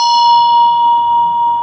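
A bell rings out with a steady, sustained pure tone, its bright overtones slowly fading while the main note holds clear and loud, with no voices present.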